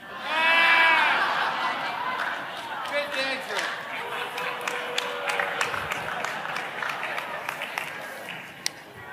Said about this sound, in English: It's a beautiful thing simultaneously being clapped for and booed.